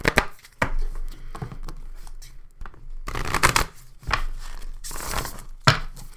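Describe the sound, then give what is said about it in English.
A deck of oracle cards is poker-shuffled, with a series of crisp, papery riffling bursts and brief pauses between them. No one speaks. “I feel like we should shuffle one more time.”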